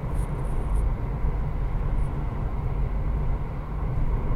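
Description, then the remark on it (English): Steady low rumble and road roar from inside a moving car in 8 o'clock Friday night freeway traffic, constant and fairly loud throughout, with no talking. “I'll just suffer in this traffic. This 8 o'clock traffic.”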